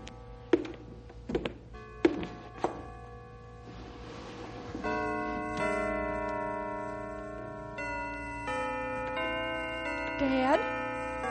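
signal or alarm, church bells ringing

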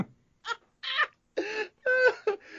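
animal, cat meowing

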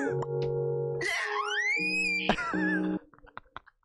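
human body sound, man screaming angrily

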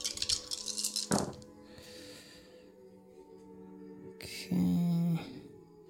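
dice being rolled

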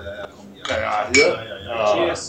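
household object, glasses clinking

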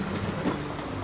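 vehicle, train running on rails

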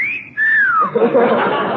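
human body sound, person whistling

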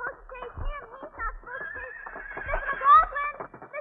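animal, horse neighing

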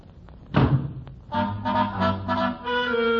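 household object, door banged shut

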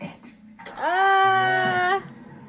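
animal, cat meowing

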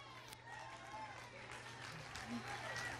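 crowd, audience applause

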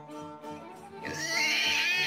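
animal, pig squealing

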